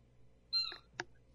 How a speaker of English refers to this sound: What was that? Was that Penny? That was a dog toy. No, that wasn't Penny. I was moving it and kicked it.